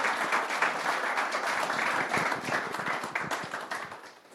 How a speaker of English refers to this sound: If you wouldn't mind, give him a little bit of a round of applause, a welcome.